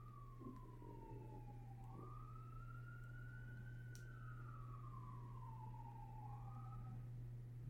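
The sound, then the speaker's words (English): An emergency vehicle siren wails from down the street, its pitch sliding slowly up and down over a constant low hum, faint, with no voices. “You hear that siren down the street?”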